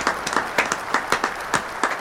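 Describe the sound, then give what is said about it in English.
Applause from a small group: crisp, sharp claps in a quick, uneven rhythm, fairly steady in loudness across the couple of seconds, with no voices. “Big round of applause.”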